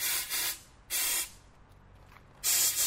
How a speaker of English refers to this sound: Adding a wee bit of air into it, that's exactly it. So water and air. That's the secret to getting those rockets to fly really far.